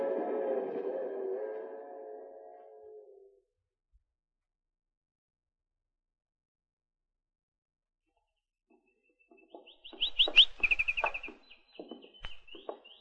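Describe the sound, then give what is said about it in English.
After a fading low tone and a long silence, a canary sings a bright, rapid series of high trills and warbling chirps, fairly loud, with no talking, in a bedroom of Colonel Cephas's house. “Gee, with a canary bird.”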